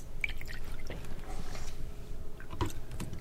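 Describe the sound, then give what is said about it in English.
250 milliliters of milk pours into a measuring jug with a steady liquid gurgle and a few splashy drips over about three seconds, with no talking. “So you pour in the measuring jug.”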